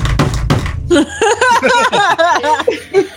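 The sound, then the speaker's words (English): A hand slams on a desk as a knock, three or four loud, dull thumps in quick succession, followed right away by a voice laughing and chuckling. “You got a sound effect. Well, maybe don't slam your hand in your desk.”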